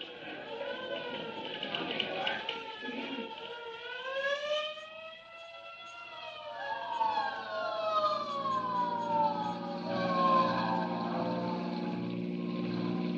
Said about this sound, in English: Say, there's a hook and ladder on the street right now. It must have turned the another alarm.